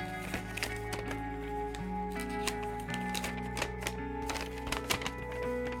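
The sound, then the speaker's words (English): A man unfolds a sheet of paper, a letter he sent to President Bush in 2004, with a series of crisp, crackling rustles and soft taps over a steady low background hum. “He shows me books of published short stories, then unfolds a piece of paper.”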